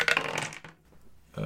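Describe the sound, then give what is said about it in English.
Dice clatter and tumble across a hard tabletop in a busy rattling burst that fades out, followed by a short pause and then a second quick clatter. The dice, two yellow and one blue, are rolled for an attack check in a tabletop game. “Oh, when I should technically roll two purple ones as well.”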